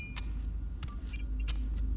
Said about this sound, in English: I walked over to the table and grabbed the keys.